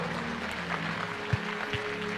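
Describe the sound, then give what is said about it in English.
Steady crowd applause from an audience giving the Lord a clap, a dense wash of many hands clapping at an even level, with a couple of low thumps partway through and no voices. “Give the Lord a clap.”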